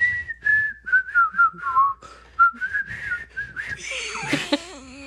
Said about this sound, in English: So I love a whistle, like,